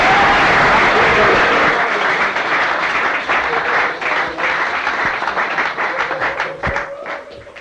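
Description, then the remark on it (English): A crowd applauds a woman steadily, many hands clapping in a dense wash that gradually thins into more distinct individual claps toward the end, with a faint voice murmuring underneath. “Give her a clap.”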